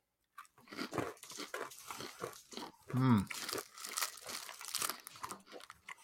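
Crinkling of Clark peanut butter candy bar wrappers being torn open, mixed with crunchy bites and chewing, with a short hummed vocal sound partway through.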